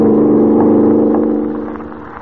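A car engine roars at better than a mile a minute as the car races through the darkness over a drawbridge. Its steady harmonic drone is strong at first, then gradually fades as the vehicle pulls away, with no voices present.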